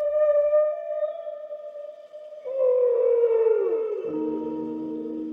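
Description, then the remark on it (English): Recorded whale song used as film music in an NPR studio: long, sustained moaning tones that hold steady, then slide downward into a deeper, rumbling call. It is loud and clear, with no talking. “And that they had to grab the longest film music they could find in the studio, which was some kind of whale song.”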